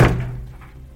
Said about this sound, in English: And then clanging the door of their shelter closed with a very smug slam.